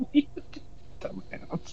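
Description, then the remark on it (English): A dog chews on a crinkly M&M candy wrapper, making faint, irregular bursts of crackling and rustling that come in uneven clusters, with soft murmuring sounds mixed in. “Sorry, my dog was chewing on an M&M wrapper.”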